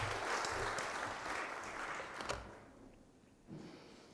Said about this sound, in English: Could we have a round of applause for them? That'd be lovely.